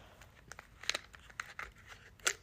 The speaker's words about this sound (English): If y'all hear that in the background, it's me opening my water bottle to drink.